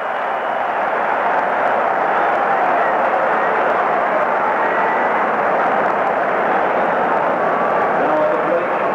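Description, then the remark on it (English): A baseball stadium crowd roars after Jose Baez's line drive into right center field, the first Mariners base hit in history, in a game against the Angels. The steady, loud cheering holds without a break for nine seconds, a dense wash of many voices with faint higher shouts and whistles on top. “Listen to this crowd.”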